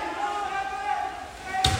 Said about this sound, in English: from about halfway slams the ball straight into the crossbar